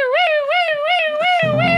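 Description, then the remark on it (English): A loud siren wails steadily, its pitch rising and falling in quick repeated sweeps, with a low rumbling noise joining underneath toward the end. “The siren is not a toy.”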